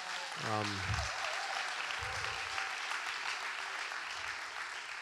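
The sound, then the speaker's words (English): An audience at an evening church gathering applauds steadily for about five seconds, a dense wash of many clapping hands, with a brief voiced cheer rising over it at the start and faint murmurs beneath. “And can we just clap for me one more time?”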